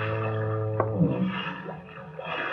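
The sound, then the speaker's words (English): A deep, droning foghorn blast holds a steady low pitch, then wavers and trails off into a rumbling, uneven tail with no talking over it. “Hear the foghorn, Evans?”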